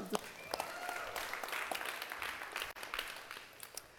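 An audience in Langley breaks into steady applause marking ten months since it started meeting there, a dense, continuous patter of many hands clapping at an even level for several seconds, with a brief dip near the end and no speech over it.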